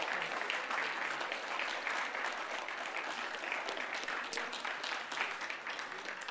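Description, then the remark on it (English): A church audience applauds steadily to welcome new members, a dense wash of overlapping claps that holds at an even, fairly loud level throughout without pause. “You can clap, everyone, and shake the hands here.”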